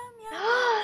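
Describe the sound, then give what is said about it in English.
A single meow from Bernice, a cat, drawn out and whiny, rising then falling in pitch, fairly loud, with no talking over it. “Bernice the kitty. Yeah, Bernice is being a crab.”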